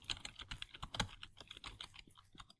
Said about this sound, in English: See, but you spelled it right, but you're still typing. What's up with that?